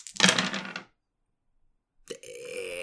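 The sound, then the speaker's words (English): Dice rattle and clatter briefly in one loud burst as they are rolled in a game against a halfling burglar, then a pause of silence before a steady, harmonic tonal hum begins and continues to the end. “Now I'm gonna roll against the halfling burglar because obviously something that's I'm going to be burgling, and I'm gonna save my lucky shots.”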